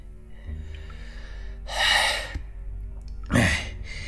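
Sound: heavy breathing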